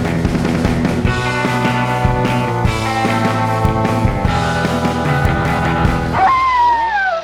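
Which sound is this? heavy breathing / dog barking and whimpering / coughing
dog barking and whimpering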